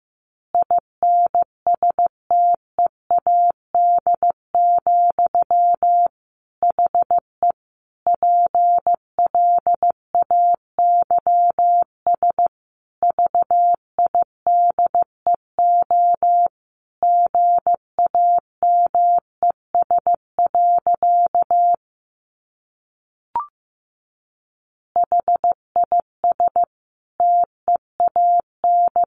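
Morse code at about 15 words per minute: a single steady mid-pitched beep keyed on and off in short and long pulses, alone, with one brief pause and a faint click before it resumes.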